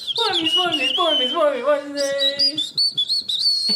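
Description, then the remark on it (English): A short, jaunty jingle for the "Boy Meets Wednesday" segment, whistled with shifting pitches and quick chirpy notes; the early part has a fuller, hummed or sung tone before turning to thin, bright whistling. “I think you're going to do the whistling.”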